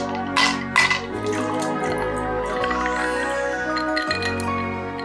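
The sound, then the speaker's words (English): Glass clinks twice sharply at the start, then a steady pour of liquid with a faintly rising pitch as a gin and tonic is mixed with House of Botanicals Maple Old Tom Gin, a 47% gin, with no talking. “Should we get the tonic screwdriver out? Indeed we should.”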